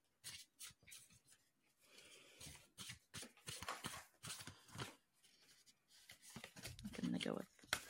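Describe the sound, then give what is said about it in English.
A deck of oracle cards is shuffled before two cards are dealt, a run of quick papery riffles and soft slaps in uneven bursts, with a voice murmuring briefly near the end. “I think I'm going to deal with 2 cards today. So I'm going to Go for it. Shuffle.”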